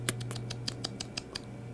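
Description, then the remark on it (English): A quick run of about nine short, wet smacking kiss sounds from the lips, sharp and fairly quiet, spaced a little unevenly over a steady low hum, with no talking. “Is that a kissing sound?”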